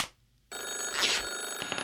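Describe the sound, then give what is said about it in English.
A telephone rings for an incoming caller's call with a bright, steady electronic trill that starts abruptly after a brief quiet moment and continues loudly, with sustained high-pitched tones throughout. No one speaks. “Let's take another call, shall we?”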